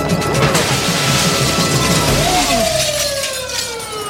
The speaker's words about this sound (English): Oh well, time to be Batman and save the Korean grocery store from armed robbers. He takes one of them out with a can of beans and tackles the other one through the glass door.